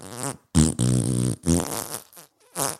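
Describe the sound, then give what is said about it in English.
Loud, buzzy fart noises, apparently imitated by a voice, come in several close bursts, one stretched noticeably longer than the others, with short gaps between them. “What about the prolonged fart joke?”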